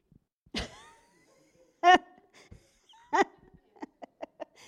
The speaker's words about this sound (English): So this is a dog.